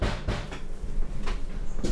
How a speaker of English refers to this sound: Someone's knocking at my door. Hold on a second.